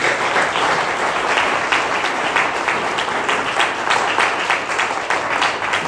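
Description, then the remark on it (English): A church audience at HCC breaks into sustained applause for a woman who has worked hard for the church, a dense, steady wash of many hands clapping at once, holding loud and even from start to finish with no voices over it. “If you would join me, can we give a round of applause for this simple lady?”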